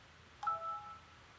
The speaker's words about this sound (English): Like, my phone's ringing. Can you believe it?